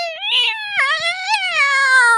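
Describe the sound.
A person imitates a wild cat's meow, one drawn-out, wavering yowl with a rich stack of harmonics that rises, dips and swoops in pitch, loud and sustained throughout.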